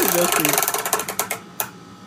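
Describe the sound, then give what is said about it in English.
A prize wheel ratchets to a halt: rapid, sharp clicks gradually slow and spread apart, ending with one last loud click. A brief voice is heard over the first moments. “Okay, it landed one.”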